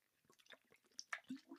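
A quiet sip of water followed by a swallow, with a few small wet mouth clicks and gulping sounds over about a second and a half, no talking.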